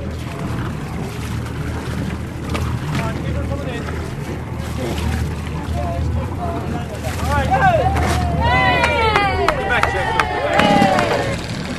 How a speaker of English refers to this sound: Finally, the ferry home to Ashford Castle has arrived. The wind is lifting and he's having trouble docking.